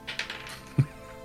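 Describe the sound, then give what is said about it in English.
A quick run of light clicks and clatters, like dice tumbling across a table, ends in one heavier knock. The sound is fairly quiet, with no voices. “Where's my dice? Use the bad dice.”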